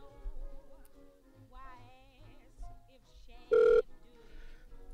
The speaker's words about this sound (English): full-blown balls-to-the-wall Bruce Lee combo machine gun doorbell ring. At least 50 times in less than 30 seconds